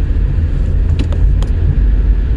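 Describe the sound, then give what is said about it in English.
Steady low rumble of a car, just repaired after its battery died, driving on the road to work, heard from inside the cabin, with a few faint clicks and ticks over the continuous engine and road noise. “So got my car back, very excited about that, and just had to resync the phone to the car, and I am on the road.”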